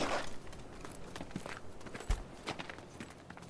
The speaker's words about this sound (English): I heard footsteps as I moved into position.